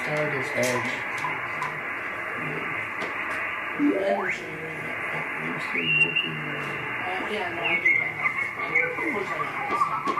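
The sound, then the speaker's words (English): A shortwave radio being tuned through static and muffled broadcast voices, with a sweeping whistle partway through and brief high beeping tones that could be Morse code, steady and moderately loud. “That's why I concentrate on Morse code. But I can't understand that either. There's one there.”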